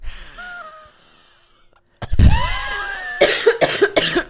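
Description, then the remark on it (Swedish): A wet, chesty cough from a person with bubbling in the airways: one heavy, raspy cough with a wheezy rattle, then a quick burst of three or four more coughs, loud and alone after a quiet moment. “Jag hosta.”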